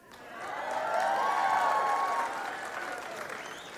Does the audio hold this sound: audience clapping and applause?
yes